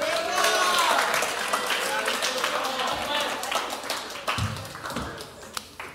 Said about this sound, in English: Can you guys give a round of applause